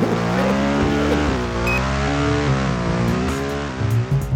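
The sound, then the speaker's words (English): A yellow GSXR 600 sport motorcycle, used for traffic reporting in Cleveland, revs loudly, its pitch climbing and dipping through several throttle blips before it pulls away at speed. No voices are heard. “GSXR 600, the squid, riding around on the yellow bumper to bumper thumper.”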